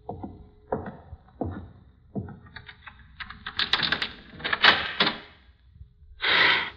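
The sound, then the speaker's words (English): Metallic clicks and rattles, like a key fumbling into a lock, then a cluster of latch clicks and a short, breathy swoosh as a door swings open. No one speaks. “There's the key. Now, which door? That one, I think.”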